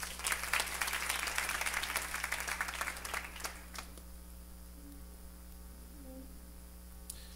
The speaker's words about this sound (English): Clap for her.